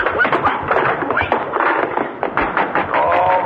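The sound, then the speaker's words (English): Someone knocks repeatedly on a door, a series of fairly loud thuds over a busy, muffled background that sounds like indistinct voices. “Boys, open the door.”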